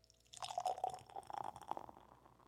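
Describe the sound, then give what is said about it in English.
A sour ale is poured into a glass, a gurgling stream with a crackle of bubbles that lasts about two seconds before tapering off, forming a foamy head. No one speaks. “Give you a nice little pour. Are you going to pour it? You can pour it for me.”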